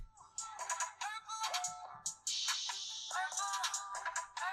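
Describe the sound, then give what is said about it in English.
A few seconds of a song played through a small phone speaker, thin and tinny with no bass, melodic vocal-like lines over bright, busy accompaniment, heard on its own without talking. “I can play 2 seconds through the phone.”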